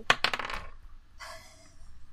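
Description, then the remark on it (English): Dice for an attack roll in a tabletop role-playing game clatter across a hard tabletop in a quick burst of four or five sharp clicks, then a softer rattling tumble as they settle, landing on a 6. Fairly quiet, with no voices. “My dice hate me. What was it? That's a 6.”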